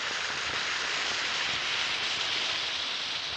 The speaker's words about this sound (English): And because Alka-Seltzer is a fizzing liquid, when you take it, it's ready to go to work right away to relieve the pain of that headache. Just drop a tablet or two of Alka-Seltzer into a glass of water and listen to it fizz.